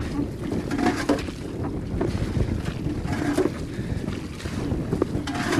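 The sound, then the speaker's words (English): A boat travels out toward an island on an extremely cold day, moving steadily through rough water, engine or hull rumble mixed with heavy gusting wind buffeting the microphone and a hiss of rain and spray, continuous, with no voices. “Now the day is extremely cold and wind is blowing and it's raining and we're in a boat. Travelling out on a boat.”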